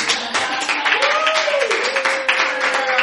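Dense, sustained applause from an audience fills the whole stretch, many hands clapping at once, with a faint tonal whistle or cheer gliding through the middle.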